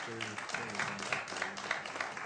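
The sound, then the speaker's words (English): A roomful of people at a board meeting claps steadily for a couple of seconds, a dense patter of applause at moderate volume with a few voices murmuring underneath. “Guys, I really appreciate that, but here there's no clapping, but we love jazz hands.”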